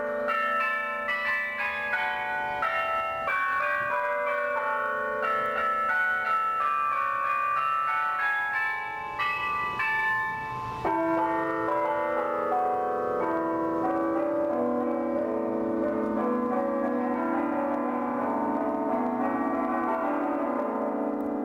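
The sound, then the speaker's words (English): The church bells of Gaudi's Sagrada Familia in Barcelona ring out in a dense, overlapping peal, their tones sustaining and blending into a continuous resonant wash for the whole stretch, with no voices. “Jess and Peter nominate Gaudi's Sagrada Familia in Barcelona. Here are the bells from there.”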